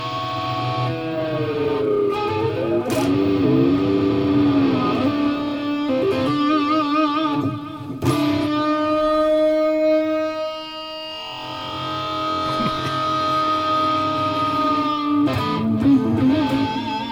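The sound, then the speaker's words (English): Sustained electric guitar notes from a Moog guitar with its sustain on, through a big, crunchy plexi-style amp sound, ring on and on like amp feedback, loud, with long held tones that slowly bend and swell, shifting pitch every few seconds, with no voices. “It's kind of like, you know, feedback, amp feedback.”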